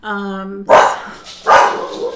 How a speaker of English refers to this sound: Oh, of course, somebody's in the hall. My dog's gonna bark.